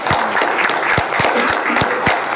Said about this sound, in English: Let's all give some applause for ourselves. And no, we need it. Clap. No, seriously.